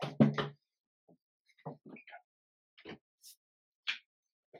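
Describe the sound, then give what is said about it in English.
A loud thud at the start, like a door being shut, followed by a few quieter scattered knocks and rustles. “I'll close the door.”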